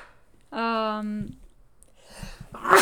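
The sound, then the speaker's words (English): A drawn-out voiced "ahh" wind-up, a brief pause, then the sharp, noisy burst of a single sneeze at the very end, caused by seasonal allergies as fall approaches. “Gesundheit. Fall's coming.”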